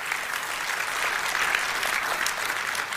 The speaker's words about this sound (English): Is anyone with me on this? Can we give the Lord a hand? Give him a clap. Give him a shout. Give him a praise. Give him something.